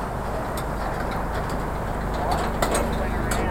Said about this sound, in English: Just wait for the Bondi rescue truck to go past and put their signs out for the day saying there's blue bottles everywhere.